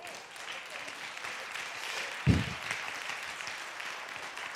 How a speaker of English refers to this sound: Some of you clapping, I don't know what you're clapping. We haven't got to the end of the story yet, so hang on, just stay with me.